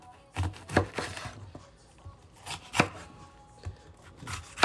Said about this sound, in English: I'm just like cutting all the green peppers in like slivers, then cutting them across so it makes perfectly diced green peppers, so that every bite can have a bit of something.